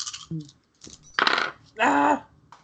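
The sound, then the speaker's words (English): Eight dice clatter and scatter across a hard tabletop in two main bursts of rattling, with a few lighter clicks before and after, fairly loud. “You can still fail this with 8 dice.”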